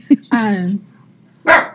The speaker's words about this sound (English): We have a big dog too. And my, yeah. I have a little dog who thinks he's a big dog. Yeah. I was going to say, that was not a big dog bark.